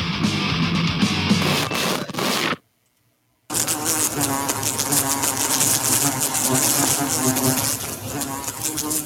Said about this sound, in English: Those are flies. That's a fly buzz. All right, those are insects. Yes, insects swarming. Yes, those are insects.